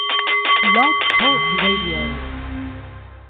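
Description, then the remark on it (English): A Nepalese meditation singing bowl rings out with a bright, sustained shimmering tone that slowly fades over a few seconds, while gliding vocal-like sounds rise and fall over it near the start. “The Nepalese Meditation Bowl is chiming, and that means it's time for The Art of the CEO”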